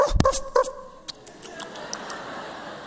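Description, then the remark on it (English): A person imitates a dog with two quick, fairly loud woofs near the start, then quiet with only a few faint clicks. “This is a dog. What does a dog do?”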